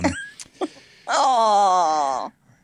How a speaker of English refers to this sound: I hear the dog. That's awful. Yeah. It's that all day.